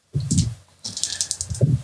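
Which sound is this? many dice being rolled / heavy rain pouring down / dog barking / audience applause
many dice being rolled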